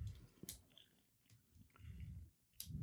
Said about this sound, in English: Yeah. Chew a little louder, though. That's good. That's good. People like that.